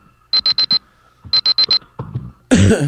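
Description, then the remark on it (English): A countdown timer alarm beeps in two quick bursts of four sharp, high-pitched tones, followed by some rustling and a loud, harsh burst of noise at the end. “What the fuck are all these countdown clocks and she doesn't do anything?”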